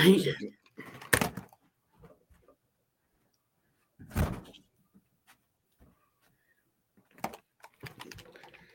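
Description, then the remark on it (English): A door is pushed shut with a solid knock, among a few other bumps and clicks in otherwise quiet surroundings, with brief murmurs of movement. “Hold on, let me close the door.”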